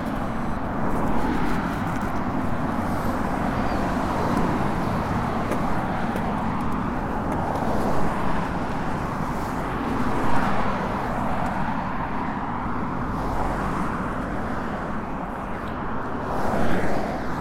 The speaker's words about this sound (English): All right, that's the first wave of cars gone.